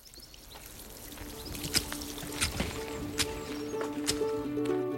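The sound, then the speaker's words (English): Boiled (not boiling) water pours steadily onto tea leaves in a cup or pot, a continuous splashing trickle with a few brighter clinks and splashes, fairly quiet, with no one speaking. “I would put 3 to 4 leaves or 4 to 5 leaves, depending on the size of the leaf, the flavour of the leaf, and add boiled, not boiling, water. Let it stand for 5 minutes covered, strain and drink.”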